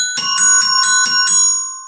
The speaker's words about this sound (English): It sounds like a doorbell. We have a doorbell? I guess we do. I guess we must have a door somewhere.